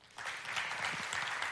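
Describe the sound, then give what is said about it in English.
An audience breaks into applause, clapping in answer to being asked who was present last Sunday, many hands in a dense, steady patter that swells quickly and holds at a moderate level throughout. “If you were here last Sunday, will you clap?”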